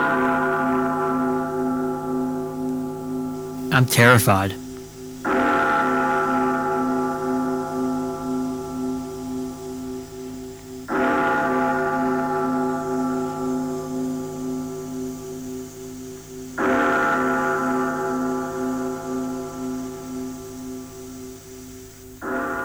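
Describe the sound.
Mess hall bells at a camp toll over and over, roughly every five or six seconds, each loud strike leaving a long resonant hum that never fully dies away. A voice speaks briefly near the start.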